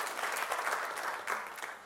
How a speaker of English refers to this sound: Can we give it up for the Lord? A great clap.